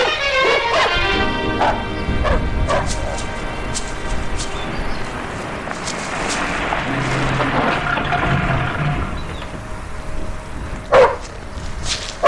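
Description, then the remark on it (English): A large shepherd dog barks during training in a cluster of sharp, loud barks near the start, then a busy rumbling background carries on before one more sudden bark near the end. “Well, there's only one guy in this town who trains shepherds.”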